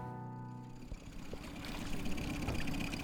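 A boat engine drones steadily as a man drives the boat on a lake while searching the surface for fish such as pike, starting with a low humming tone that gives way to a broad, loud rush of motor and water noise. No voices are heard.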